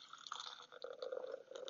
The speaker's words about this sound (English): Hear that? Hear that beautiful pour. I like to pour it into a cup because it's easier to measure what I drink for some reason.